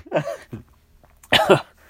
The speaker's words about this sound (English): Oh, I'm sneezing.